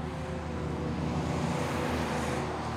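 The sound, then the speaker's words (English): A steady, low rumble of car traffic outside, with engine hum and road noise holding at a constant level throughout and no voices. “Buster Lee turned off the TV and fell asleep staring at the lights of the passing cars outside.”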